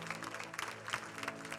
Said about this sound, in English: And everybody said, amen. Come on, clap, man. Man, this feels good in here, don't it?